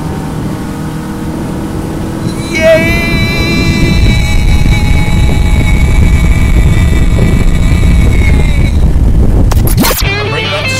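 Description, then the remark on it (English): A motorboat engine roars as the boat is opened up, revving higher with a whining pitch climb and a heavy, churning rumble over water, while someone cheers briefly before the roar cuts off abruptly near the end. “Man, I am happiest when I'm on the water, on a boat.”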